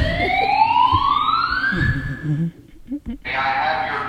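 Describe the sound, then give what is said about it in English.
A loud alarm siren wails upward in one long rising sweep lasting about two seconds, then cuts off; after a brief pause, a steady burst of harsh hissing noise follows. “Alarms. Danger!”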